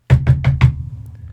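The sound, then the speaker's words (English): Four firm, evenly spaced knocks on the door of a house, fairly loud with a hollow thud, followed by a short quiet tail with no voices. “So we fucking go over there and we knock on the door.”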